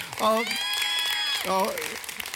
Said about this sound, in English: It sounds like a mercy clap, but that's, I appreciate the heart.